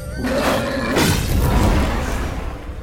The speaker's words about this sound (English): Whoa! Did that thing just breathe fire? Yeah, we don't know how they do it, but they're really mean, and they do whatever the Night Wolves tell them to.